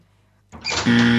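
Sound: door opening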